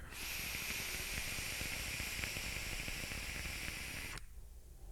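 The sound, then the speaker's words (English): A vape coil on a mech mod with a Hermetic RDA crackles and sizzles for about four seconds, a steady hiss packed with rapid, uneven pops and a low rumbly edge, then cuts off abruptly into quiet. “And it's a good, deep crackle. It's a good, deep rumble of a crackle.”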